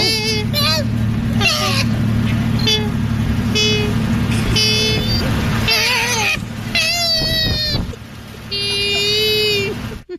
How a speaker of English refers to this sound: And then finally, this is for all the animal lovers out there, including Gandhi. Two koalas fighting.